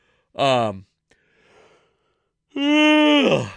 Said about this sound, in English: It's a yawn. I'm worn out. You know, sleeping 90 minutes at a time is not a restful sleep strategy.